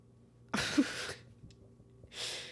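A sudden sneeze bursts out with a sharp onset, followed a moment later by a softer, breathy exhale; no one speaks.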